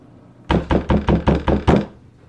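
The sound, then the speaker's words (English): Six sharp raps on a wooden door in quick, steady succession, loud, with a slightly louder final knock and no voices. “And then suddenly, there is a rapping at your chamber door.”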